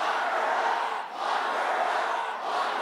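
A large crowd at a Donald Trump rally in the 2016 campaign chants loudly in unison against Clinton, a dense roar of many voices that rises and briefly dips in a steady repeating rhythm.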